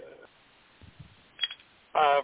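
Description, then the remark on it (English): A phone slipping and being fumbled in the hand: a few soft, low thumps and a sharper click of handling noise, brief, followed by a short burst of voice. “I had another one pulled up, and the phone slipped in my hand, and I just, let's see.”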